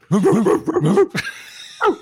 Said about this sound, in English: And then there's like a sound effect of a junkyard dog.